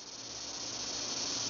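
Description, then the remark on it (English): A steady, dense electric buzz of cicadas drones without a break, loud and even throughout, with no voices present. “The entire ride home, the sound that would fill the warm Houston afternoon would be the call of the cicada.”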